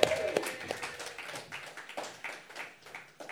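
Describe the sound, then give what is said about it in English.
An audience applauds, many hands clapping in a dense, steady patter that stays fairly soft and even throughout, with no clear voices standing out. “Clap it up”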